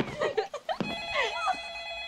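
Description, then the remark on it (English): A telephone rings at 10 o'clock with a steady, high electronic tone that holds for over a second, while muffled voices and rustling sounds overlap it. “Just hit 10 o'clock and the phone's ringing.”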